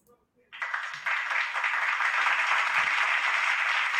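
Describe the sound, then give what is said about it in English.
After a brief near-silent moment, a burst of applause starts and continues steadily to the end, a dense, loud wash of many hands clapping with no pauses. “thank you for the applause.”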